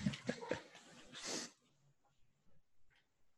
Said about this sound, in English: I'm sorry, my wife is home and obviously the dog's barking.